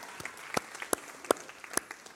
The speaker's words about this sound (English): we're clapping for CG's announcements.